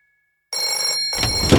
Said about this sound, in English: John, the telephone! The telephone, answer it!